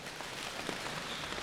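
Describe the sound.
A steady patter of many quick slaps on the thighs, made by a group collectively creating a thunderstorm with their bodies, blends into a dense, even wash that mimics rain starting to pour harder, with no voices present.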